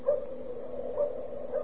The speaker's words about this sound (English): Oh, it's a dog. Little dog barking.